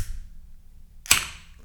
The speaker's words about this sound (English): But do you want to open up that can so we can get the podcast started?